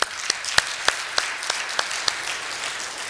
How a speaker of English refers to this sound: You deserve another round of applause, actually.